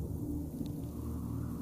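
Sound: rumbling thunder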